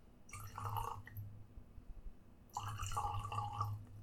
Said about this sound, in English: It comes from cask 54, which is ours. I'm going to pour a little bit now.